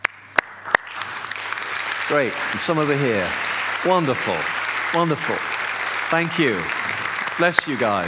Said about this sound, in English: whatever ministry you're involved in, would you mind just standing up now? We want to applaud you. Let's just celebrate you. Just stand up where you are.